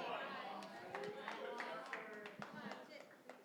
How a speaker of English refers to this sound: I am preaching. Thank you for clapping.